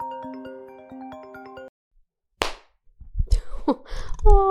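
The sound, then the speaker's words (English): A short stretch of tinkly, rhythmic tones stops, a brief silence follows, then one loud, sharp hand clap made for the microphone snaps out before a flurry of scuffling, clattering noises. “I just clapped because that's just what I do for the microphone and it made Blue jump.”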